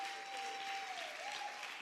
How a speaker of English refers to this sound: Clap your hands, church, if you believe that he's coming back.